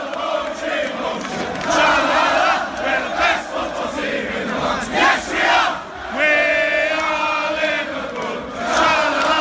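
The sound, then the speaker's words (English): A large crowd of football fans chants and sings songs about Liverpool before a semi-final, in loud, sustained unison, voices swelling and dipping in waves with bursts of shouting, steady and dense throughout. “So we're singing songs about Liverpool.”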